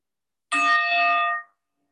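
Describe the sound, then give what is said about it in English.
A single meditation bell is struck once to begin a meditation session, its bright, layered tone ringing steadily for about a second before fading out, with no voices. “There'll be three bells, one at the beginning, one halfway through, and one on the hour.”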